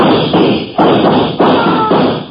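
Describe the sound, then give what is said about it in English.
Five loud gunshots fired into a heavy burning log to chip sparks off it, in a rough, uneven rhythm. Each is a sharp blast that trails off into a crackling wash of noise, with no voices. “Shoot into it. Chip sparks off that heavy log that's burning.”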